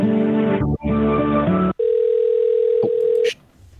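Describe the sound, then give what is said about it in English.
After a phone operator disconnects a call, a steady, unbroken telephone tone hums at a single mid pitch for about a second and a half, following a brief stretch of loud, buzzy, harmonic line noise. “I'm gonna go ahead and disconnect the call, sir.”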